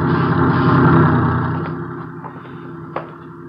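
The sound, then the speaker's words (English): A truck engine rumbles on a small movie studio lot, loudest in the first second then gradually fading as it moves away, with a few faint clicks and knocks near the end. “Watch the truck”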